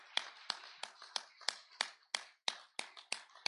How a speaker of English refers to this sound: Today is our Pastor Appreciation Day. And I would, if everyone, let's give our pastor and first lady a great hand clap. We thank the Lord for them.